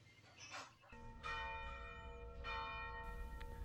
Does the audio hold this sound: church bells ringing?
yes